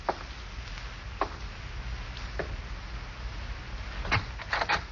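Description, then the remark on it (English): Slow, evenly spaced footsteps thud across a floor as someone walks to the front door, then a quick cluster of clicks and rattles as the door latch turns and the front door opens, all over a low background hum. “Slowly, you walk to the front door.”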